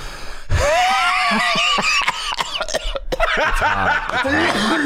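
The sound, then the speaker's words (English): Loud bursts of coughing tangled with wheezy, high-pitched laughter from someone attempting a wheeze laugh, several sharp coughs breaking up the strained laughing over a few seconds. “You gotta watch out for that cough. It hits the back of your throat.”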